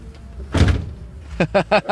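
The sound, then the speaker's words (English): The big, heavy door of a massive old red Cadillac, once owned by Johnny Cash, swings shut with a single deep, solid thud, followed a moment later by people beginning to talk. “Oh, man, those big, heavy doors.”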